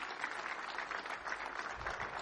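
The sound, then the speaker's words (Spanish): A church audience claps steadily for the Lord as the Emmanuel Church team stands, a dense even patter of many hands with no breaks, while a faint voice or two murmurs underneath. “Denles un aplauso al Señor.”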